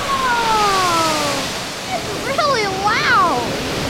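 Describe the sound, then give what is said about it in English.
Water spills over an edge at the Harry Tracy Water Treatment Plant in the hills of San Bruno in a steady, loud rushing torrent, a continuous broad splash throughout, with voices briefly exclaiming over the noise toward the end. “Oh, that water's getting really high. It's gonna spill over. Oh, there it goes.”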